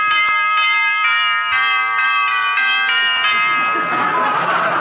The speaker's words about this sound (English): Well, you really fixed that doorbell, didn't you, dearie?